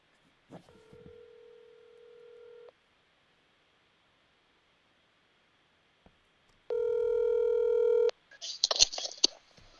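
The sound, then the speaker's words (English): A phone call being placed to a coach: a soft, steady electronic tone, a pause, then a louder buzzing tone lasting over a second, followed by crackly bursts of line noise as the call connects. “And so I'm going to go ahead and call”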